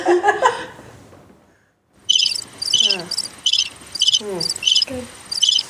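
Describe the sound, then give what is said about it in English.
Crickets chirp loudly and steadily in quick, regular pulsing bursts, starting after a brief near-silent gap and continuing alone to the end. “Crickets? Where's the crickets?”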